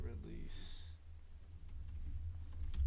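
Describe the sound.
Soft, scattered keyboard clicks tap away faintly over a low background hum, following a brief voiced sound and a short tonal whine at the start.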